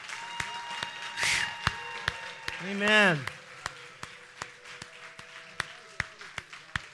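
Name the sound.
audience clapping hands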